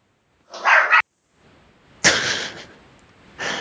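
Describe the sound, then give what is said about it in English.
A dog lets out three sharp barks spaced about a second apart, fairly loud, with the last one cut off at the end and no talking. “He just added an extra little bark in there before I can do it.”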